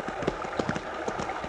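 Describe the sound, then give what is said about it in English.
Horse hooves clip-clop as riders head toward Port Lancer, approaching a creek crossing with a rocky bottom: a steady, uneven rhythm, each dull knock repeating every fraction of a second over a constant soft background hiss. “The creek bed has a rocky bottom, and your horse is liable to stumble unless you keep his head up.”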